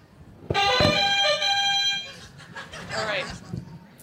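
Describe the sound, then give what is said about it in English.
A loud, steady buzzing tone, a team's chosen buzzer sound, sounds for about a second and a half, then breaks off into a few seconds of lively vocal sounds from people. “And what's your buzzer sound?”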